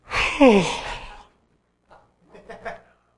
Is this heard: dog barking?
no